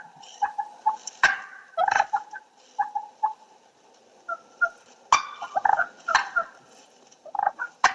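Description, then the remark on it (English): Wild turkey cluck and purr call, a territorial call and a call of contentment: sharp, scattered clucks punctuated by soft rolling purrs, a few bursts of louder calling, with no voices present. “It's a cluck and purr, and I'm going to crank my volume up on my computer.”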